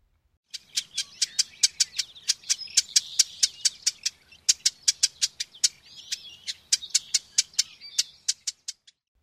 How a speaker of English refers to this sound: Their call is a sharp, somewhat buzzy, nasal chit.